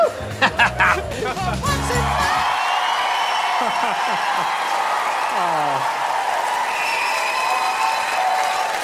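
A large audience claps steadily and loudly for several seconds, with scattered cheers and rising whoops breaking through the dense wash of applause.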